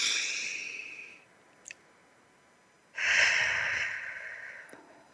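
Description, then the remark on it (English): Two slow, deep belly breaths, in through the nose and out through the mouth: a breathy inhale, a short pause with a faint click, then a longer, airy exhale. No talking. “Breathing in through your nose and out through your mouth like a straw.”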